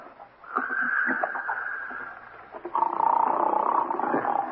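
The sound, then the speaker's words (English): A man in room 9 snores loudly in two long, rasping breaths, each a rattling, buzzy drone lasting about two seconds, with a brief pause between them and no talking. “Guy snoring up a storm at 9.”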